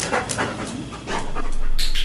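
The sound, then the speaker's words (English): A Labrador Retriever named Moxie, part of a University of Pennsylvania study training dogs to detect COVID-19 in humans, pants steadily with quick rhythmic breaths and a few soft whimpery tones, growing a little louder toward the end. “She's a Labrador Retriever, and she is part of a study at the University of Pennsylvania.”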